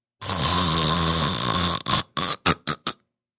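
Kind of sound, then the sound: human body sound, loud snoring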